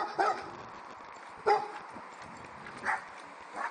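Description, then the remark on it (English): Dogs behind a fence bark in short, sharp bursts in the morning, about four barks spaced unevenly over a few seconds against a quiet outdoor background. “Hi, dogs.”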